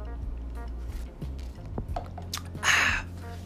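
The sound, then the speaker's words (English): Wet mouth sounds and small liquid clicks, then a short airy slurp as someone sips a drink, over a steady low hum with no talking. “Let me take another sip.”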